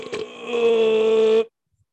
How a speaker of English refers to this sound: God, I keep burping.